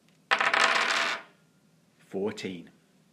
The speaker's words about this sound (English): You need to roll 3 dice to see where you end up. 3d6, here we go.